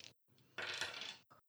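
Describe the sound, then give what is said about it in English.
Dice clatter and tumble across a hard tabletop in a quick burst of bright, rattling clicks during a tabletop role-playing game, fairly loud, settling within about a second on a 6, with no voices. “That is a 6. Oh, no. Yeah, the dice are not kind to me today.”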